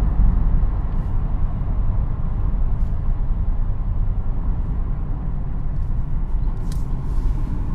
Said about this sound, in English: Like, maybe the freeway was closed for a period of time, and now they reopened it, which is... Well, now here's the traffic.